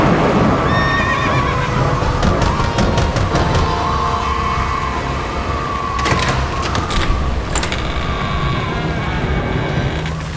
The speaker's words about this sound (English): Well, I wasn't expecting this rain. My lily-livered horses practically refused to mount your hill.